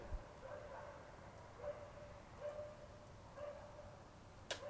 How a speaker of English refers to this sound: Just let that dog finish. It's a little bit creepy, isn't it? Don't know if you can hear that.